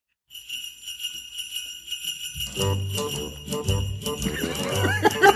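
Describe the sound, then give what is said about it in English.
Bright jingle bells shake steadily from the start, then a bouncy music intro with thumping bass and a clip-clop rhythm joins in beneath them, growing louder: the intro of a Christmas novelty song from 1960. “Hey, jingity jing, it's ….”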